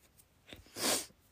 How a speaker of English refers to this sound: Sorry, I'm still sniffling. I'm not still crying. Don't worry. I get very sniffly when I cry.